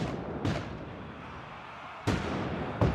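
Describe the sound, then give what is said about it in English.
A battle sound effect of a Union assault at 4:30 a.m., soldiers charging a field: three sharp, loud cannon and gun bursts at irregular intervals over a dense, continuous rumble of shooting, with no voices. “At 4:30 a.m., a single cannon initiates the Union assault. Union soldiers charge the field, guns blazing.”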